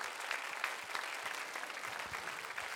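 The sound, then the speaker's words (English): Steady applause from an audience honoring college graduates, a dense wash of many hands clapping at an even level throughout, with no voices rising above it. “Yes, we're clapping.”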